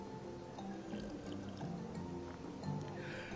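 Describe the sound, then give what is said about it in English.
Someone takes a quiet sip of a drink, soft wet slurping and liquid movement lasting a few seconds, with faint clicks and gulps and no talking. “Before we get to the math, let me take a sip of my beverage here real quick.”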